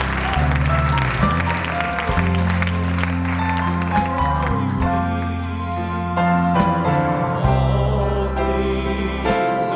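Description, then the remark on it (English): An audience claps steadily in praise of God throughout, a dense wash of many hands over sustained low organ or keyboard chords that shift every couple of seconds. “Can we just give a hand clap of praise to His name?”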